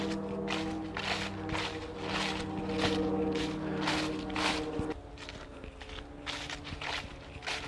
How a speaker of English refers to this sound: don't know if you can hear that, but there's like a airplane going over.